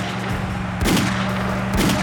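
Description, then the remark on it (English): Two sharp gunshots, about a second apart, crack loudly over a steady low engine-like hum as a woman in an Explorer fires her gun at police officer Wayne Morgan through the open window, with no voices. “In a flash, she slammed her foot on the gas, grabbed her gun, and aimed at Wayne Morgan through the open window.”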